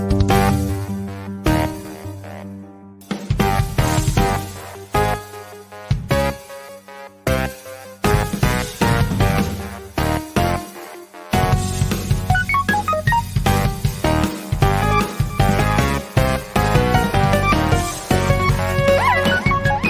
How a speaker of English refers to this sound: And in case you missed it before, here's the theme song again.